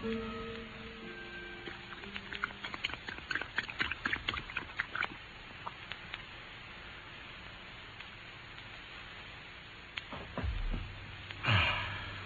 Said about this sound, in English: Holmes proceeded to grind the only remaining pill into some milk and watched anxiously as the dog drank